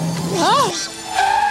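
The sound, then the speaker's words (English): A voice imitates the squealing brakes of a wheelchair jerking forward: a rising-and-falling whine that swoops up and back down, then settles into a steadier high squeal near the end. It is brief and moderately loud. “He stared at me through his thick bifocals with hungry eyes until the chair jerked forward.”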